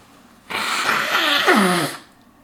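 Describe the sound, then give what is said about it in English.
A person blows their nose in one long, loud honk lasting about a second and a half, a rough rush of air with a wavering, falling nasal tone near the end, then silence. “got to blow my nose.”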